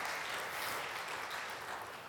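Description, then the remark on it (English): A crowd claps steadily in a dense, even wash of applause with no speech over it, holding at a constant level for the whole stretch, a big round of applause given to the team up front. “Man, can we give our team up there a big round of applause?”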